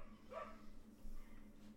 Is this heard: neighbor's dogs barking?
yes